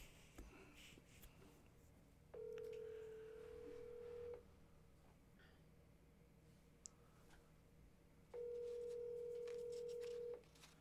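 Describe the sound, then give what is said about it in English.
A telephone ringback tone sounds twice, each steady ring lasting about two seconds with a long pause between. Faint clicks come just before the first ring, and no one speaks. “I'm calling.”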